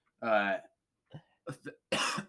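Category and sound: human body sound, sneeze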